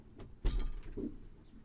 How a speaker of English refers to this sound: There we go, opening up the side doors.